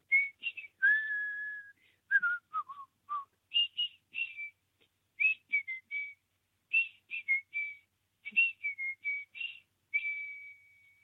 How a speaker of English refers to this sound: Thank you, caller. Lovely bit of whistling. Gone. They've gone. Whoever it is, it's whistled and hung up, which is perfect. But I'd like to know what it is.